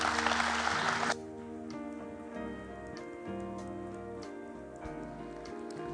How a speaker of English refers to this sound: give her a hand clap as she comes.